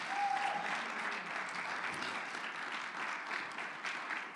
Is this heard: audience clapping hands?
yes